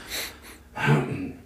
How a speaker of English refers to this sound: But sorry. I keep clearing my throat right in the microphone.